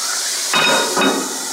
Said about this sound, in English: And here's the way I melt it, okay? This is an old sort of Greek diner, like New York City Greek diner trick. You take some water, okay? And you put it in the bottom of the pan, and you cover it at the same time. Ready?